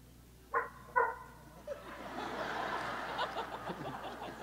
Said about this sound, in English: What was that? It was a dog. It sounded like a dog.